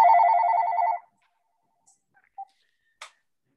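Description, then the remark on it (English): A phone ringer trills loudly for about a second with a rapid warbling electronic tone, then cuts off, followed by a few faint clicks and a short tone blip. “I do not know how to take an ordinary cell phone and cut off the sound, the ringer.”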